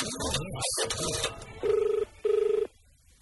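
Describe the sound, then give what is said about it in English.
After a moment of voices, a telephone rings twice: two short, buzzing trills with a fast warble, separated by a brief pause, fairly loud. “Yeah, I'm sorry, I can't come to the phone right now.”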